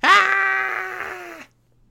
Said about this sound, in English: The classic, you know, Shipwreck scream. We gotta have the pain scream.